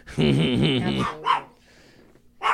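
A dog barks loudly: one long, drawn-out harsh bark, followed by two shorter, sharper barks separated by brief pauses.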